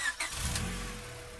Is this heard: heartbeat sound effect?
no